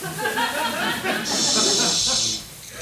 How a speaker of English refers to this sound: Did you hear that? Sounds like an owl clacking. Not an owl, kid. That is distinctly a lizard. But you're right. The intensity and loudness of the clicking indicates a bigger reptile than I've ever come across before.